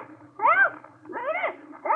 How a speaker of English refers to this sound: It's the parrot, all right. Yelling bloody murder.